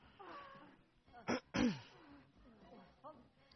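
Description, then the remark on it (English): A cat gives a loud, drawn-out meow that slides downward in pitch, right after a short sharp burst, with faint voices murmuring before and after. “A meowing noise?”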